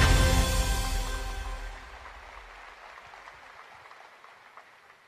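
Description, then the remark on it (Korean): A burst of crowd applause for South Korean presidential candidate Lee Jae-myung, loud at first with a brief musical tone over it, then thinning into scattered clapping that fades over about five seconds. No voices are heard. “다시 한번 큰 변화와 같은 박수 부탁드리겠습니다.”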